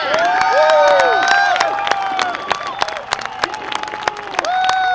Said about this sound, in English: Well, the crowd went wild, of course, and well, they should have. And not just the crowd down at JPL, where I was here in Northern California. People just went nuts.